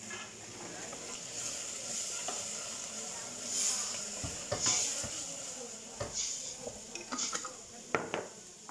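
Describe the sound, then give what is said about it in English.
Pots and pans clatter and clang in a busy family kitchen at home, several sharp metallic knocks scattered over a steady sizzling hiss, moderately loud, with no voices. “Pots and pans clang alongside the friction of family life.”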